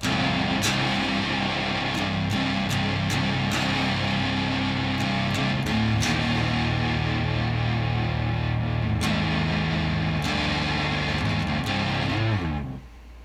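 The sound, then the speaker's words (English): A heavily fuzzed electric guitar, run through a fuzz pedal into an amp on its clean channel with no other effects, plays loud, thick sustained chords with sharp strums punctuating the wall of distortion, continuing steadily before cutting off near the end. “And I ran the fuzz pedal through it, and holy fuck, it's crushing.”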